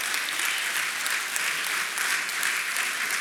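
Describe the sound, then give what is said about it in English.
The City Gate audience breaks into steady, sustained applause, a hand clap of praise for Jesus, many hands clapping together in a dense, even wash of sound that holds at a consistent level throughout. “Come on, City Gate, if you're glad that Jesus came for relationship and not religion, can we just give him a hand clap of praise?”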